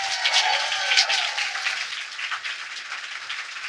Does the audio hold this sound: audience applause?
yes